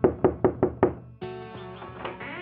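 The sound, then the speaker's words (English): Five quick, evenly spaced, sharp knocks on the door of Martin's aunt, Rita Finlay, followed by a sustained tonal, music-like sound that takes over for the rest of the moment. “And then they knocked on the door of Martin's aunt”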